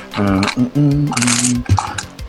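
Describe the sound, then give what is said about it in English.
An eight-sided die (D8) rattles and clatters across a table in a quick burst of small clicks, landing on 7, partly masked by a voice making drawn-out vocal sounds at the same time. “That is 7 on the dice.”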